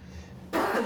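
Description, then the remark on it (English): A single sneeze bursts in abruptly after a low, quiet hum, loud and breathy, with a sharp onset that fades into a noisy exhale. “Bless me. Bless you.”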